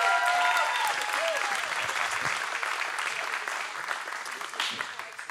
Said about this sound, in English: Would you give Jeff Shaw a round of applause as he comes to share?